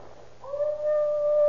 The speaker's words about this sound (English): That howling's coming from around and back somewhere.